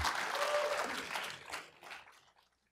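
A short burst of audience applause, dense clapping that rises quickly, holds for a second, then thins into scattered claps and fades out within about two and a half seconds.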